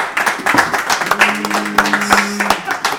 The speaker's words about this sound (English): So a big round of applause, please.